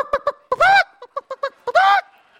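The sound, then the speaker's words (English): A hen squawks loudly, two drawn-out, strained cries separated by a quick run of short, sharp clucks, with no talking, as she scurries under the clothes racks inside a clothing store. “I spotted the hen two racks away near the dressing room.”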